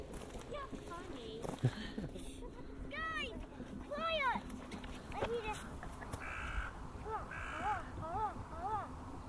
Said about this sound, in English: That's not a crow. Was it a magpie? I don't know. If we sound again, kind of squeaky.